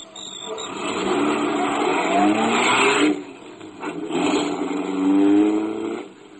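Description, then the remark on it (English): A car engine revs up loudly, climbing in pitch as it pulls away, eases off briefly, then accelerates again before fading slightly at the end. “I was driving slowly because I still felt wobbly.”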